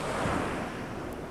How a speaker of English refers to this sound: You walk a little further along the beach, listening to the waves crashing on the shore and the seabirds making noises as you walk.